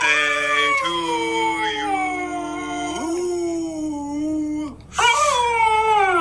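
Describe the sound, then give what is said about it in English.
A dog named Maggie howls along with someone singing Happy Birthday, long wavering notes sliding up and down, loud, with a brief break before a final rising howl. “his faithful dog friend Maggie singing Happy Birthday in duet.”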